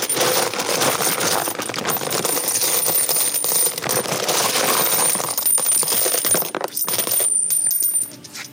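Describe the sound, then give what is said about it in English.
A heavy, chunky brass coin with a thick rim and thin center, showing the lion of Conan the Barbarian, rings out on a concrete floor, a bright, sustained metallic shimmer with high tones that hum steadily for several seconds before fading, with no talking over it. “They ring out pretty good too, like when they hit the concrete floor.”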